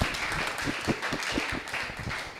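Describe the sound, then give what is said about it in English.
An audience claps their hands to celebrate the Lord, a dense, steady patter of many hands at once filling the space at a strong, even level with no voices standing out. “Clap your hands and celebrate the Lord.”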